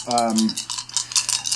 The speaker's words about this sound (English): Okay, so where are we throwing that last die? Yeah, I'm going to throw it to the mermaids just to make things interesting.